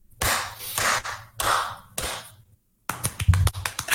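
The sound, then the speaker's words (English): Applause from a small group welcoming a guest: bursts of sharp, irregular clapping, a short silent break, then a quicker, denser run of claps. No one speaks. “Oh, we're applauding for him.”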